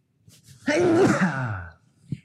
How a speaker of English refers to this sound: Oh, excuse me. Do you like that sneeze? That's quite a sound effect. I tried to cover the microphone. It sounds like a ninja. It honestly sounds like a ninja when I sneeze. I've also never sneezed on the air, so you guys are lucky.